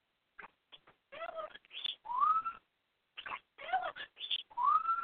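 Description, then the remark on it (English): A pet bird named Tony Bird squeals in two bursts of shrill chirps, whistles and rising squeaky calls, separated by a brief pause, with no talking. “Stop squealing.”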